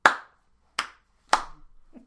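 A sparse, mock round of applause: three sharp, loud hand claps spaced unevenly and slowly, with nothing else, followed by a faint low murmur at the end.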